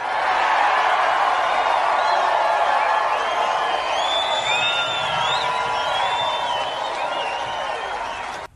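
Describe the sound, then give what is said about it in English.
A large crowd at President Trump's Mount Rushmore speech applauds loudly and steadily as he talks about teaching children to love their country, flag and God, with cheers and a few whoops rising above the clapping throughout, before tapering slightly at the end. “So President Trump, to thunderous applause, is talking about teaching our children to love the country, love their flag, and love God.”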